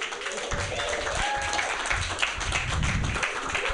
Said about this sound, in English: Give this guy a round of applause.